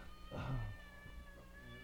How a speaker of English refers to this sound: Fuck you, cat. Idiot. Stupid ass cat. She's so rude. Cat's a producer, man.